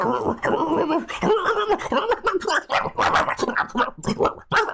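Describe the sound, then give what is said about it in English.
A person imitates a dog, producing a rapid string of barks, yelps and whiny, howling sounds up close, with no actual speech in between. “bark us out of line, and we'll reveal at the next episode if we remember.”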